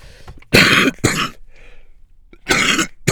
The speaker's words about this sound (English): Oh, excuse me. I don't know where this... somebody help me out with this cough. I still have a cough. I've had this cough for like a month. It won't go away. It makes smoking very difficult.